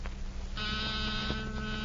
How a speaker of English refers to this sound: Guard that with my life? That's nothing but a small buzzer and battery set. An ordinary door buzzer.